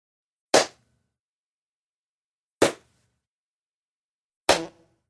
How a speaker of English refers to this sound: Synchronization claps for the audio for this court case. I'm going to clap three times.